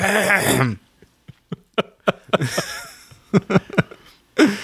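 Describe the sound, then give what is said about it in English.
A person deliberately and performatively clears their throat in a series of sharp, rhythmic rasping bursts, fairly loud, with brief vocal sounds before and after. “I gotta yeah, performatively clear my throat now.”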